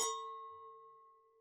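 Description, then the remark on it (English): Two wine glasses touch in a single bright clink as two people toast before tasting the wine, leaving a clear, steady ringing tone that slowly fades over about a second and a half, with no voices. “We're going to try an official cheers.”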